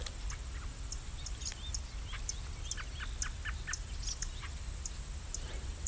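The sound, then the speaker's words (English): An American robin calls amid a gray catbird's chup calls and a field sparrow's ticking, set against a constant high insect drone and a low outdoor rumble, with no one speaking. “The American robin making the other sound there.”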